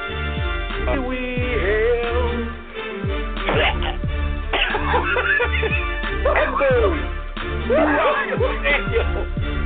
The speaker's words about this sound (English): There is a pause throughout the stadium as this man sounds like he just coughs up a lung.